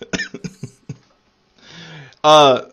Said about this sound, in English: FYI, people, I apologize for the cough and the sound and the things and yeah. I'll do my best to keep it under control. I'm quarantining.